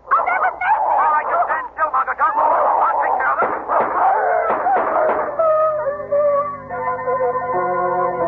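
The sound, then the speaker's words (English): Two giant dogs bark, snarl and growl while chasing and attacking a man across a lawn, in a loud, frantic tumble of overlapping sounds for several seconds, then the commotion gives way to sustained, steady musical chords. “It's the dog, the giant dog. They're chasing him”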